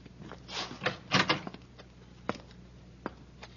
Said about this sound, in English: Hey, I think I hear somebody in this room, sir. I'll open the door. You cover me from the side.